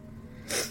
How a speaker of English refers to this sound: Oh, I'm gonna sneeze. Hold on.